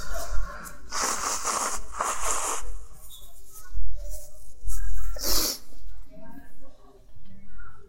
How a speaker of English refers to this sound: Sorry, guys. I need to blow my nose. Don't worry, we're still picking it up on the audio. Can someone bring me some more tissues, actually?